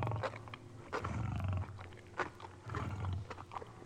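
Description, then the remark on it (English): A grown male Maasai lion growls low and rumbling in repeated bursts over his daily meal, a 15-pound chunk of raw meat, with wet tearing and chewing sounds as his huge teeth rip through the meat. “A grown male Maasai lion growls over his daily meal, a 15-pound chunk of raw meat.”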